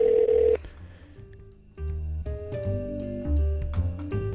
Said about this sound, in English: Is it ringing? Oh, there it is.